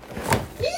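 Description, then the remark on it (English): A voice imitates a kitchen fridge door opening: a short breathy burst followed by a rising, creaky vocal squeak, under a second long and fairly quiet. “And you walk into the kitchen and to the fridge.”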